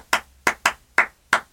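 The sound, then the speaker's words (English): Five sharp hand claps in an uneven rhythm, part of a clapping game pattern, a quick pair in the middle between steadier beats, each crisp and fairly loud with brief silence between, no voices. “So the person will still be clapping like you're like.”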